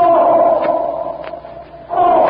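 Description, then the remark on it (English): A raging black bull elephant named Marab trumpets loudly in a corral, a long brassy blare that fades into a lower rumbling stretch before a second strong trumpet blast at the end. “several Taurian slaves stand uneasily eyeing the loudly trumpeting jungle titan”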